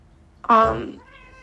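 A pet cat named Maze lets out a single loud meow that rises sharply, then trails off into a thinner, fading tone against a quiet background.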